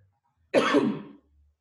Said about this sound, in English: I pause, but purposely let you finish, so like cough. Give me a second.